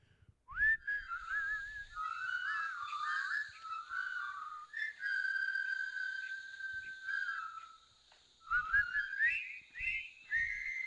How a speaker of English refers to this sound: They're whistling far too strongly for people that would be as thirsty as they would be.